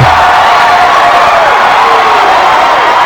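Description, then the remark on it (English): A large crowd at a wrestling event roars and cheers wildly for the Undertaker in a YouTube video, a loud, dense, unbroken wall of voices and whoops that holds steady for the full three seconds. “And you hear in the YouTube video, the crowd is fucking going wild.”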